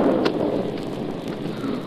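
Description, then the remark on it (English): Steady, dense storm rain whipped by the wind hisses throughout while a low rumble of thunder rolls underneath, loud with a few sharp crackles, and no voices. “Waited a week for this storm.”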